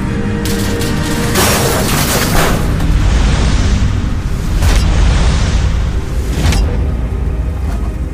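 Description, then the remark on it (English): Metal roof panels being violently ripped off the Batmobile after it crashed into a gas station, a loud, continuous rumbling din punctuated by several sharp, heavy tearing crashes spread across the span, forceful, with no voices. “All of a sudden, the rips of the roof panels of the Batmobile.”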